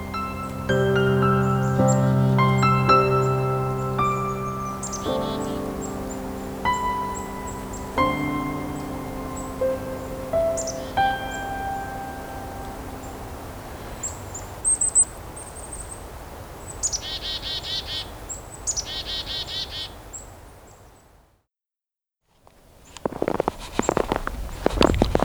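Wild birds, including singing black-capped chickadees, call by a roadside woodlot of cedar, poplar, birch and maple during the 44th Hanover Walkerton Christmas bird count in 2019: scattered high chirps and clear whistled notes (the chickadees' song) over a steady background hiss, with a brief hush near the end before the calls return.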